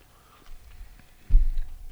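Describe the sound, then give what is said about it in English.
Chewing toast-and-marmalade flavoured milk chocolate containing crunchy toasted pieces, with soft, muffled crunches, ending in a louder, denser bite near the end; no one speaks. “It's got a nice orangey tang with that little crunch.”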